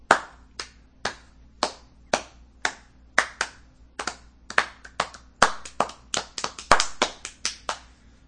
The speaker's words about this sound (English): I gotta do the slow clap.